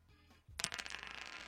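Dice are rolled, clattering and tumbling across a hard surface, a sharp burst of rattling clicks that quickly settles into a softer, continuing rattle, with no one speaking; the roll comes up seven.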